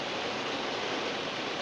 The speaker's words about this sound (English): That's the rain in the background, by the way.